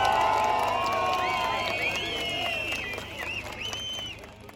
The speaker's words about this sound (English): Erdogan came out onto the balcony of the ruling Justice and Development Party headquarters in Ankara, greeted by a crowd of probably a few thousand people who were chanting, who were singing.